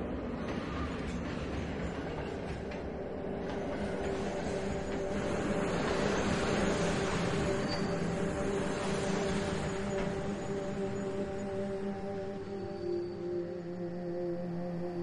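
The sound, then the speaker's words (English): A subway train going to Queens rolls into platform 2 with a loud, continuous low rumble and steady humming motor whine that swells slightly midway, filling the whole stretch without any voices. “Train incoming on platform 2. Going to Queens.”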